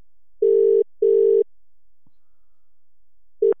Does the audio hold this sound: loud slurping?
no